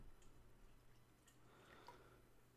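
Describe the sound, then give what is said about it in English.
Soft fizzing and light pouring of Coke, with scattered tiny pops and drips over a faint steady hum; no one speaks. “If I have a chance for a little bit of ASMR in any video, it's like, now we'll listen to the sounds of fizz from my Coke”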